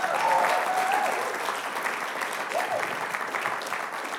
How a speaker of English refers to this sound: Good evening, everybody. Let's give the worship team a good hand clap again.